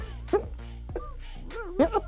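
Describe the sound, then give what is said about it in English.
A person imitates a dog, letting out a few short, gruff voiced barks in an uneven rhythm, fairly loud, with the last two coming in quick succession. “Dogs eat butterflies. Who let them dogs out?”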